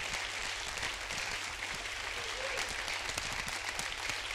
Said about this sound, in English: Clap your hands.